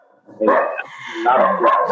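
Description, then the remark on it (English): A dog, Milo, barks a few times, sharp yappy barks in quick succession with a slightly whiny edge, fairly loud. “Sorry, guys, my dog.”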